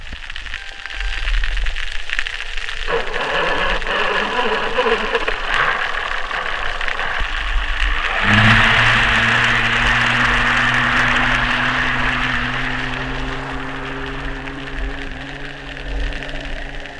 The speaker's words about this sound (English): So you're really giving us a sense here of what it sounds like when we humans sort of smother this ocean noise. Yeah, and you know, an important thing to note about that is just one very small outboard engine. So this is a tiny little boat